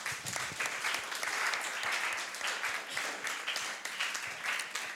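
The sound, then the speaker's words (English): An audience breaks into sustained applause for the Lord after a prayer, dense overlapping claps continuing steadily for several seconds, loud with no voices standing out. “Give the Lord a clap of rain.”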